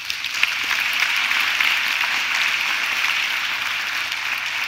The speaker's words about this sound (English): So thank you to all of you that had a role in making Sundays happen for the last 3 weeks. We should thank them with a round of applause.